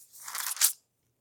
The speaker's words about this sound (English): Sorry, I got to turn the page.